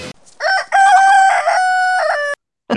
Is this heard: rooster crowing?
yes